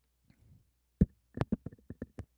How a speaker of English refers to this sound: 1 second. Gonna take a sip of some water. I'm not telling you what kind.